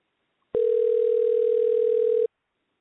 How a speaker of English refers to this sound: All right, the phone is ringing.